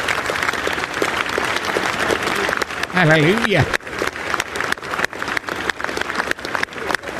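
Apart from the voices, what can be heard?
applause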